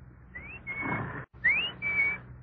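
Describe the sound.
A person whistles an imitation of the bird of a clock that tells the time with a bird jumping out: two high phrases, each a quick upward slide followed by a held, steady note, over a low background hum.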